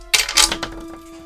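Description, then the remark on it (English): Several dice clatter and tumble across a hard table in a quick burst of sharp clicks, a few lighter rattles trailing off as they settle, fairly loud with no talking. “Oh, boy. Multiple dice.”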